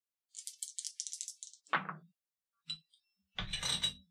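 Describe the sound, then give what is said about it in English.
Dice for a notice roll at -2 rattle in a cup with a rapid, bright clatter, then tumble out onto a hard surface with a sharp clack, a small tick, and a final scattered rattling roll. “My dice are not treating me well tonight.”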